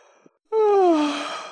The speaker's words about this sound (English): Here the Mock Turtle yawned and shut his eyes.